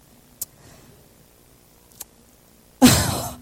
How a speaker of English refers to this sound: And I choose to blow my nose before I hop up on stage now.